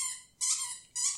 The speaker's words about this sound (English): Mulder's discovered he just wants to walk around and just squeak toys all day.